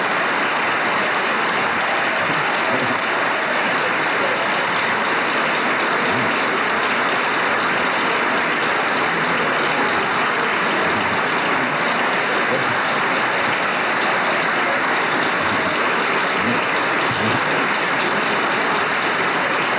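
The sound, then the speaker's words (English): Gerald Ford's colleagues, on their feet, applaud the minority leader Gerald Ford, a dense, steady wash of clapping from a large crowd that holds at an even loudness for about twenty seconds with no voices breaking through. “Gerald Ford's colleagues are on their feet applauding, and obviously that reference was to the minority leader, Gerald Ford.”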